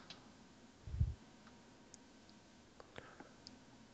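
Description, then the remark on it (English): A quiet, steady ticking of a countdown clock timing quiz contestants, faint, with a soft low thump early on and no voices. “They are on the clock.”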